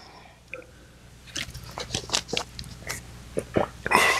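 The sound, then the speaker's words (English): Wet mouth sounds of someone sipping water: a series of soft slurps, swallows and lip smacks over about four seconds, ending in a brief breathy rush. “Let me have a little sip of water here.”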